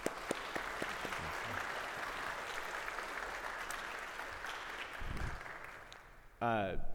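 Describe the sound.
An audience applauds steadily for several seconds, a dense crackle of many hands clapping, then the clapping fades as a man's voice starts speaking at the end.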